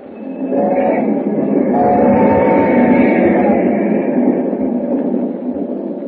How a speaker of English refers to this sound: As the train roars into the night, he and Hu Ling talk softly.